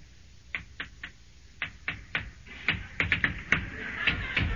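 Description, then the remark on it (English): A run of sharp knocks by a visitor on a house door, moderately loud, starting in spaced pairs and then coming faster and more insistently toward the end, with no voices. “Answer the door”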